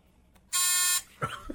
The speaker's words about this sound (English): You didn't have to buzz it yet. I just want to make sure you knew where it was.